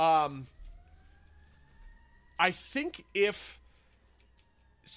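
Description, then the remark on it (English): A loud siren wails steadily, its tone holding and slowly rising as it passes outside, with short bursts of a man's voice breaking in over it. “Boy, that was a loud-ass siren.”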